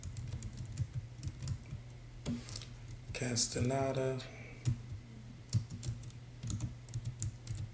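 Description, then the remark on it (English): Rapid clicking of computer keyboard keys, a steady patter of keystrokes throughout, briefly overlapped by a man speaking a word over a low background hum. “My keyboard's off.”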